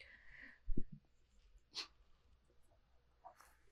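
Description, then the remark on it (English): A single sharp sneeze bursts out, preceded by a short low thump and breathy sounds, then fades into quiet background noise with faint rustling. Fairly soft overall, no talking. “I had a little bit of a sneeze.”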